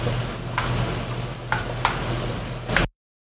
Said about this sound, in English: All right, let me get a spoon so that way I can stir the onions. Just stirring.